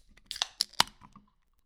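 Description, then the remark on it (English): A can of Grimm Lightyear double IPA beer is cracked open: a few crinkly clicks of the tab, then one sharp, bright pop followed by a brief fizzy tail. No one speaks. “Grimm Lightyear double IPA. Should we get in it? Pop the cracker. Top.”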